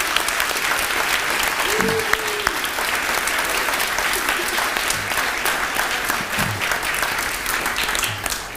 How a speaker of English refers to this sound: So thank you to all involved. Let's just give them a round of applause again. Thank you.